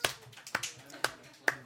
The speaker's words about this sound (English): Slow clap.